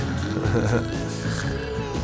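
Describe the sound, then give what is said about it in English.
Someone imitates snoring with a sustained, low, rumbling vocal drone that stays steady and fairly loud for about two seconds, with no other sounds. “Yeah, which is pretty much what I sound like when I go to bed. Pregnancy, snoring.”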